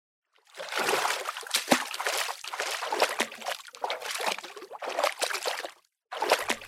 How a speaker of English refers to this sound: I wade into the water, carefully cutting a path through the egg rack floating on the surface.